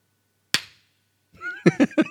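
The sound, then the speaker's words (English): A single sharp hand clap cracks out on its own as a dance routine ends, then after a short silence a voice makes a run of loud, pitched vocal bursts. “And when it ended and like the claps go...”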